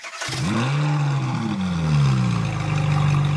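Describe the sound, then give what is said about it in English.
A small vintage car engine revs up loudly, its pitch climbing and wavering before settling into a steady, throaty drone with no voices. “Yes, we have also the unique experience with the minivans, with the Fiat and Zastava 850 from the 60s and 70s.”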